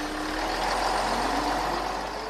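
A school bus engine rumbles steadily, with a broad, sustained hiss like air brakes releasing over the low drone. No one speaks.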